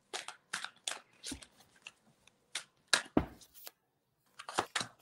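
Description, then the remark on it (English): A Mystical Shaman Oracle deck of cards is shuffled before drawing a card, giving a series of crisp, papery bursts and flutters in uneven rhythm, with short pauses between handfuls and no talking. “I'm just going to give them a shuffle, set the intention, and see what card it is that comes out of the pack for you,”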